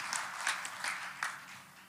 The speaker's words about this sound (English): They've been married for 38 years. Come on, let's give a round of applause. Glory to God, 38 strong years, faithful years.